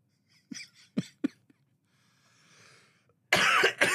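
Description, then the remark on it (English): A series of sharp coughs in quick succession, then a quiet raspy breath and a final loud, harsh burst of coughing. No one speaks. “Yeah, sorry, I just cough my guts up periodically.”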